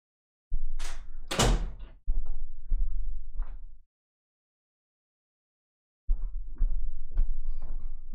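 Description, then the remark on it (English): A door is answered for someone at it: a sharp clack and rattle as it opens, a couple of seconds of thuds and movement, then after a pause more knocks and shuffling as it closes. “Somebody going to answer that door or what?”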